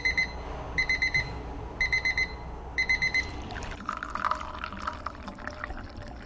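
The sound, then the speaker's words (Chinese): A tea timer beeps in four quick bursts of rapid high electronic chirps, clear, followed by the sound of liquid being poured. The timer marks a three-minute steep of Chinese Maofeng green tea at a tea house in Portland. “这种绿茶需要浸泡3分钟后才能获得最佳效果，计时器此时能够发挥作用。”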